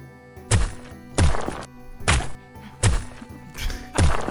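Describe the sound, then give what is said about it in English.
Five heavy punching thumps land one after another at a steady pace, each a solid impact with a brief slap, separated by short quiet gaps. “Just punching over and over.”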